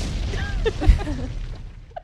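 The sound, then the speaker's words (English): A short, muffled boom with a low rumbling burst, like a small explosion effect, followed by faint crackling debris and a brief tail that fades out. “I would actually prefer a small explosion.”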